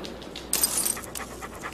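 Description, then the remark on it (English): A hound-looking dog in a commercial pants in quick, breathy huffs, with a brief bright jingle partway through; nobody speaks. “Oh, you had to edit out the panting, didn't you?”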